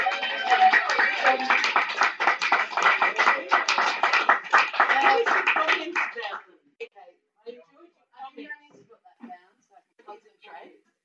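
A crowd applauds loudly and steadily for about six seconds, then the clapping stops abruptly, leaving a few faint, scattered sounds and murmurs.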